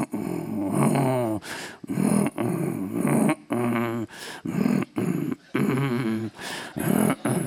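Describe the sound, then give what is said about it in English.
A voice imitates a chugging boat engine with a steady run of loud, gravelly, growling vocal bursts, broken by short pauses, for several seconds. “I heard the sound of the engines kind of going, you know how boats, they kind of chug like that.”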